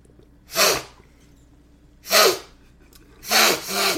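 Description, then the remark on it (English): Someone sniffles three times, sharp wet nasal inhales spaced about a second and a half apart, the last one doubling into two quick sniffs, fairly loud with no talking. “I can still hear you sniffling.”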